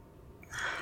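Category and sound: human body sound, deep breath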